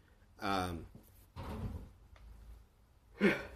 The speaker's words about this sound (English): I was about to sneeze. That was kind of a little baby sneeze, but nah.